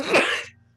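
A single sharp sneeze bursts out with a harsh, breathy rush that fades within half a second, leaving only a low, steady hum behind.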